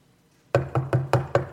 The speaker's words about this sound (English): All of a sudden, somebody's knocking at the door. Somebody's knocking at the door and saying, hey, I got to have 3 loaves of bread.